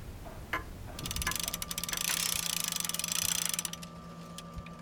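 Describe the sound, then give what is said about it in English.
Mechanical clocks tick in the Wind Me Up Clock Shop, a clock repair shop in Rhinelander. They make a fast, dense run of overlapping metallic clicks for several seconds, with a steady low hum underneath and no one talking. “The tick and the talk that you're listening to, that is what they call the beat.”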